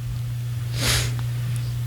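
A yawn: one brief, airy breath that swells and fades in under half a second, heard over a steady low electrical hum, with no talking.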